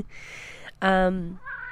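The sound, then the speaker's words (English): A cat gives a breathy hiss, then a loud, drawn-out yowl that trails off into a softer whine, during a playful fight between cats in the background. “Sorry, there's a cat fight going on in the background.”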